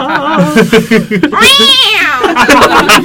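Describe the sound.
A cat lets out one long, loud, drawn-out meow that rises and falls, with voices talking just before and after it.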